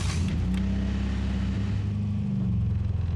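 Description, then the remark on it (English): A busted car's engine drones in a deep, steady rumble, its low hum shifting pitch a couple of times as it picks up speed along a road. “She picks up speed.”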